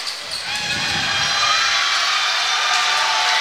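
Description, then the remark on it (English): A steady, loud roar from the home crowd at a Gallatin versus Portland basketball game, with Gallatin leading 49-46 and 17 seconds left in the fourth quarter during a free throw. The roar is dense and sustained, with cheering swells throughout and no clear speech over it. “Home crowd starting to make some noise.”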